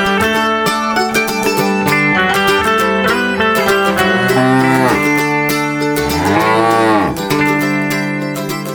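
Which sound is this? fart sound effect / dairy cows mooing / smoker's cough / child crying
dairy cows mooing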